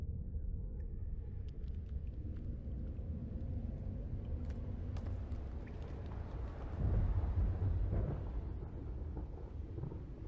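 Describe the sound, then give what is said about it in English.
Deep, ferocious thunder rumbles continuously, swelling into a louder, ringing crack partway through before rolling on, in a storm at a sea cliff with wild wind and waves below. No voices, just the heavy storm roar throughout. “A shock of ferocious, ringing thunder woke me.”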